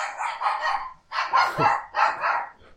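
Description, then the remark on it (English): A dog barks in three loud, harsh bursts in quick succession, each lasting close to a second, with brief pauses between and no talking. “Marked for Death, insert barking.”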